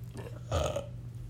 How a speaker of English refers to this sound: Sorry. Oh, another burp.